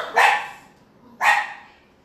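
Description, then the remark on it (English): A dog barks twice, about a second apart, at people going to the church across a field, with sharp, loud barks that ring out briefly and trail off into a quiet pause between them. No one speaks. “You don't bark at people when they go to church. Stop it.”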